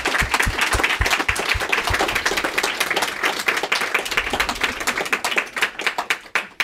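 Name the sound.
audience round of applause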